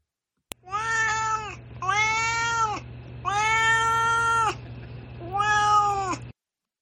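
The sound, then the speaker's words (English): A cat named Duarte meows four times in a row, each call long, drawn-out and plaintive, loud, with short pauses between and a faint steady hum underneath. “All right, now it's time for Duarte's Corner, where my cat Duarte shares his opinions about the book.”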